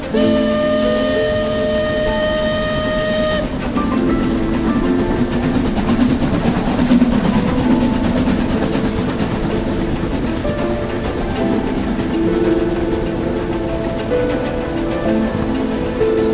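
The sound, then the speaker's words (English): A passenger train, the Night Train, rolls steadily along the rails after a stop in Omaha, with a continuous loud rumble and clatter, a high sustained tone sounding over it for the first few seconds. No one speaks. “Come on, Edith, Paul, hurry on to the train.”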